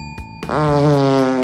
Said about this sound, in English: Was that a fart? Yeah. Get out of here.